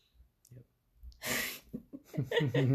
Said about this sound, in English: We just heard her sneeze from the bathroom.